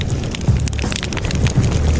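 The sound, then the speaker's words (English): A fire crackles steadily, with dense pops and snaps over a low, constant roar, filling the whole stretch without any voices. “Until then, crackle, crackle.”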